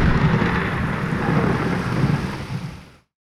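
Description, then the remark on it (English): A loud thunder crack rolls into a sustained rumble over stormy noise, lasting about three seconds before cutting off abruptly. No one speaks. “The long shadow of the dark fortress itself falls across you as a sudden crack of lightning splits the sky.”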